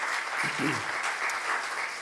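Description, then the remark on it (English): A crowd claps steadily for last year's Vacation Bible School helpers, a round of applause given to God, a dense, even wash of many hands with no break, while a voice or cheer rises briefly underneath in the middle. “Let's give God a big round of applause for our helpers from last year.”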